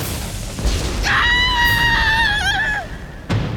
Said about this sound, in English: They arrived outside the city walls in time to hear Oshun scream.